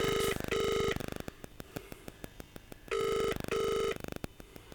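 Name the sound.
phone call ringing unanswered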